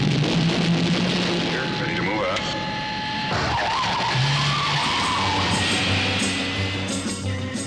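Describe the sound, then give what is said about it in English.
A car engine revs loudly as tires screech and skid, with the pitch of the motor rising and falling over several seconds of continuous roaring. “It was also home to the Batmobile. To the Batmobile. Let's go.”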